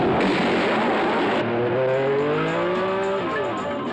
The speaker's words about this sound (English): And so, ladies and gentlemen, welcome to the most famous motor car race in the world, the 38th running of the Grand Prix of Endurance and Efficiency, the 24 hours of Le Mans.